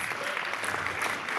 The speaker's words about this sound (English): Right, ladies and gentlemen, your judges and mentors, please give them a round of applause for their undying support, lots of effort, and a lot of love that's been put into this.